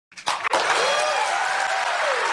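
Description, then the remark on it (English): A crowd bursts into loud, sustained applause and cheering, with dense clapping and whoops holding steady after a brief ragged start. “I like don't understand what they're cheering for.”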